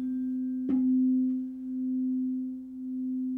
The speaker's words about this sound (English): If we now listen closely to the sound of two tuning forks that have slightly different frequencies, we might hear something interesting.